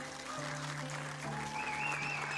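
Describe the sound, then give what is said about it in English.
A crowd applauds veterans for their service to the country, a dense, loud wash of clapping lasting a few seconds, with sustained musical tones playing beneath it. “So veterans, as you make your way down here, we're going to applaud you and your service to our country.”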